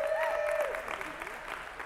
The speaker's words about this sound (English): You can clap for her. Come on.